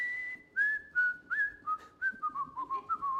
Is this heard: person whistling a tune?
yes